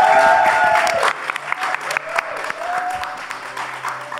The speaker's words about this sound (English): we'd like to do a massive thank you to Smashfest and the Albany Theatre in Deptford for hosting us. And please give a round of applause to the audience here,